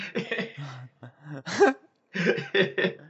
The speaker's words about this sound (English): Excuse me. Fuck. No, that's good. I'll know where that burp comes in.